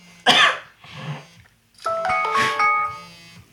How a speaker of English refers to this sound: All stuffed up a bit and a phone alarm's going off to say that I've got a Skype appointment in 10 minutes, so I'll have to be quick.